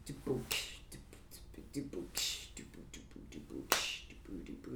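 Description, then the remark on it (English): Several sharp, bright finger snaps ring out sporadically over ongoing conversation, one noticeably louder than the rest, each a quick crisp crack with a short tail, snapped to mark where a clap would be added. “But essentially, you would add that clap in where I snapped and made it so that it's like the”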